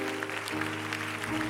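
crowd, audience clapping hands

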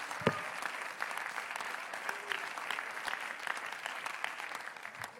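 crowd, audience clapping hands

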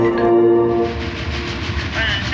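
vehicle, train passing with horn

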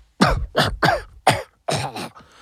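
human body sound, coughing and spluttering

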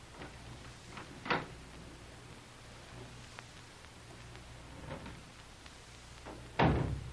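household object, door being opened

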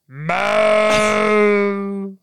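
human body sound, loud burp

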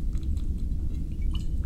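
food or drink, sipping water

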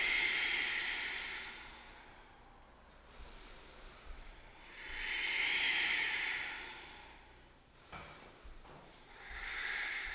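human body sound, ujjayi breathing

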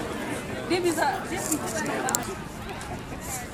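crowd, crowd chatter

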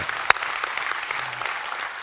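crowd, audience clapping

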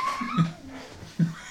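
animal, dogs whimpering

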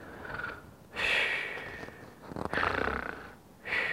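human body sound, snoring

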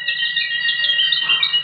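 bird, bird song

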